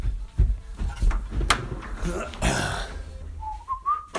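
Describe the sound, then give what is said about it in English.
A door being opened after someone bangs on it: a few dull knocks and clunks, a short rushing burst, then a thin rising squeak at the end, with faint muffled voices underneath. “someone's banging on my door. So I will go see who this is.”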